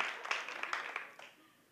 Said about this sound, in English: Come on, y'all gonna clap, clap it up. That's good. Y'all making me work.